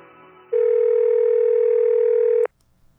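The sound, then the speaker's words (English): A steady, loud telephone tone holds for about two seconds, then cuts off abruptly, with only faint low background before and after it. “What an actual phone call.”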